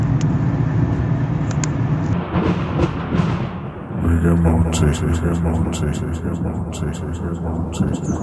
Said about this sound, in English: Anyway, I better go, because I'm just about to hit some traffic here, and it's a little difficult with one-handed driving.